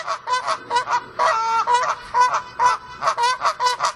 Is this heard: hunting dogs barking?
no